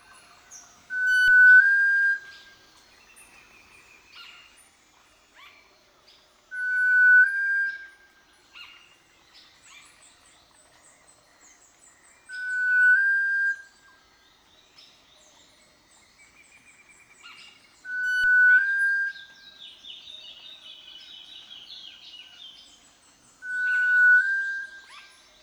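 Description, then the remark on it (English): Sunbittern calls: five long, clear, steady whistles repeat about every five seconds, loud, over a faint background of chirping birds and buzzing insects. “So hear the sounds of the sun bittern.”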